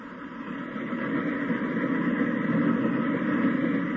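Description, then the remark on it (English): A train pulls out of a station, a steady, rumbling broad mechanical roar that builds slightly in the first second and then holds constant, with no voices over it. “Gillis, get on the train.”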